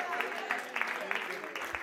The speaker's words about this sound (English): Yeah, give him a hand clap.